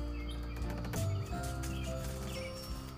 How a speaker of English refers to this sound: I do hear your cicadas.